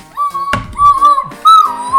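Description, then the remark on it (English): A person mimics a referee's whistle by whistling, a fairly loud, steady high tone held in two long bursts with a brief break between them, with no talking. “Is that what a whistle sounds like?”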